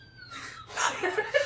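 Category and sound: animal, cat making noise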